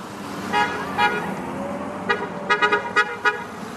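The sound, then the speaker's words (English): Several short car horn honks sound in an irregular series, two early beeps then a quicker cluster of toots, over a low rumble of passing vehicles in a Sunday parade of teachers' cars with handmade signs through the suburban neighborhood around Elmonica Elementary in Beaverton. “Teachers taped handmade signs to their cars and waved and honked through the suburban neighborhood around the school.”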